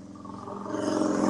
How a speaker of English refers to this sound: Oh wait, I got a motorcycle. Hold on, watch this.